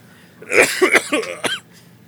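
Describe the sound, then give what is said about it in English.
A loud fit of harsh coughing from a person, several rough bursts in quick succession with a strained, throaty edge, then quiet. “Yeah, I'm still coughing.”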